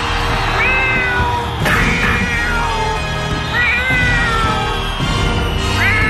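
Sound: cat meowing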